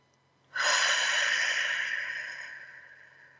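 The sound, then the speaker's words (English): A single deep, airy breath, taken into the belly during a mindful breathing exercise, begins abruptly, holds steady, then slowly fades away over a few seconds, with no talking around it. “Deep breaths in. See how big you can make your belly.”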